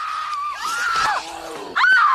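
The character Willie Scott in the film Temple of Doom lets out a long, shrill scream that wavers and dips in pitch, followed by a second sharp, loud shriek, intense with no talking.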